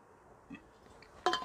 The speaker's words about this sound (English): Hang on, bear with me a minute. See that? Drink of water. Hang on.